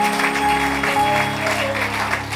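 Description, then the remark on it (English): An audience claps for the Lord steadily for a couple of seconds, a dense wash of hand claps over a sustained low organ-like drone, with no voices standing out. “Give the Lord a clap of you.”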